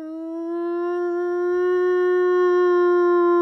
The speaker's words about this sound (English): Yeah, it just freaks me out. The fucking sirens don't freak me out because of Silent Hill. That freaks me out because of another horror movie.